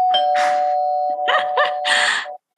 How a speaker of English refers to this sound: And so that's when I willed myself to, you know, press that doorbell.